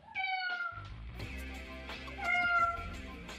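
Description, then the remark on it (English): Kittens meow in high, thin cries, with one near the start and another about two seconds later, over a low rumbling background. No one speaks. “show me kittens.”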